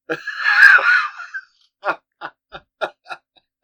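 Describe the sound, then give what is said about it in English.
A person imitates a macaque as a greeting: one long, shrill, strained screech, followed by a quick series of short, choppy hoots. The voice is loud. “Because, I mean, you screeching and hurling feces around the room is just how we start the show.”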